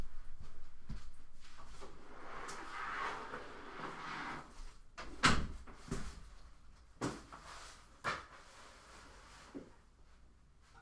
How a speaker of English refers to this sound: I'm still recording, so just don't be loud. Let me close my door. Hold on, guys.